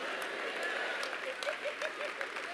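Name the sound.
audience clapping hands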